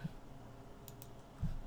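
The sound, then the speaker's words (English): A couple of quick, crisp clicks of a computer mouse as a link is clicked, over a low background hum, with a soft thump near the end. “So 3, 2, 1, clicking link.”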